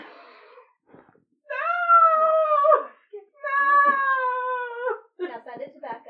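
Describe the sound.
A cat that does not want to take a bath yowls loudly in two long, drawn-out, wavering wails with a short pause between them, and brief bits of talk before and after.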